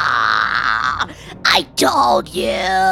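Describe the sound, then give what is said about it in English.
A voice imitates the shrill, terror-stricken scream of the character Poe under a mind-affecting fear effect: loud, strained wailing that swoops up and down in pitch over several bursts, with brief breaks between them. “Well, while you figure that out, all you hear as this is all happening is a screechy, shrill, terror-stricken Poe scream.”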